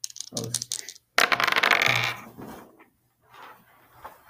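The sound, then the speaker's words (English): Dice clatter onto a hard table in a few quick hits, then tumble and rattle in a longer, louder roll before settling; faint voices murmur afterward. “We dropped the dice”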